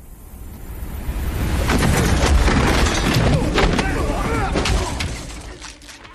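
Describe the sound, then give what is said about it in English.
A loud, busy run of cinematic punch and impact effects for hitting someone in an action movie starring Jason Statham: sharp thuds and cracks over a booming low rumble with swishing whooshes between blows, and muffled voices underneath. “Must be great to have sound effects like that when you go to hit somebody in an action movie.”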